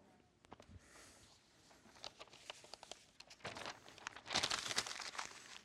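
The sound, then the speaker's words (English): Paper sheets crinkle and rustle as they're handled, an uneven series of crackles that grows busier and louder toward the end, with no talking. “If I take this piece of paper and I let it go right now, what's it going to do?”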